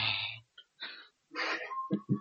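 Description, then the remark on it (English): A voice imitates heavy, exaggerated breathing into the microphone: several loud, rough huffs and wheezy inhales in an uneven rhythm, ending with two quick gasping puffs. “I'd be worried, like, halfway through the video, you just start heavily breathing for some reason.”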